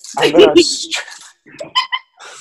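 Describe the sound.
A dog lets out a couple of loud barks in quick succession, followed by quieter, scattered sounds and a faint voice in the background.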